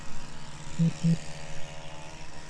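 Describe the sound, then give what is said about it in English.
A car or lawnmower engine drones steadily close by, a low rumbling hum with a couple of brief louder pulses partway through. “I'm sorry, this freaking car is right there, or this lawnmower, folks.”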